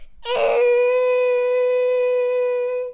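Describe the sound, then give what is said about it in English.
A child imitates a T-Rex roar with a single loud, high-pitched screech. It opens with a raspy burst, then holds a steady, strained tone for nearly three seconds before cutting off. “Can we hear your T-Rex roar?”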